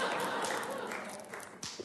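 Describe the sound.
A church audience applauds, many hands clapping in a dense, steady wash that eases slightly toward the end, broken by a few sharper claps, with faint voices mixed underneath.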